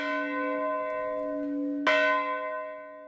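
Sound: church bell ringing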